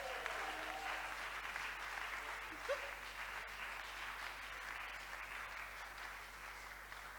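Steady, continuous applause from a church audience, a dense even clatter of many hands clapping throughout without pause, with no voices standing out above it.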